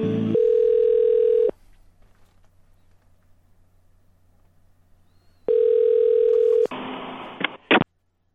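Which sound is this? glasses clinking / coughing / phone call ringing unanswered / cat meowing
phone call ringing unanswered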